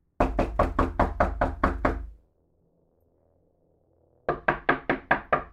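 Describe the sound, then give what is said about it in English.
Loud, rapid banging on a door in two volleys: about nine heavy thumps, a short silence, then six more, forceful. No voices. “as he came to his senses, he realized someone was banging on his door.”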